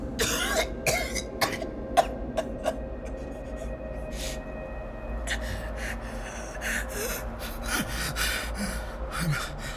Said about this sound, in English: Calm yourself. The coughing subsides.